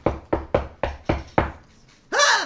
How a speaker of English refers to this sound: In the morning, you're awakened by a loud banging on the door.